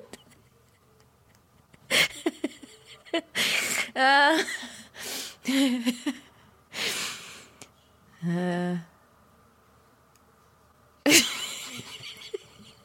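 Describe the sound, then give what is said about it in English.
A person imitates a horse's neigh with a series of short, wavering vocal bursts and breathy snorts, spaced apart by pauses, fairly loud. “Like a fake horse.”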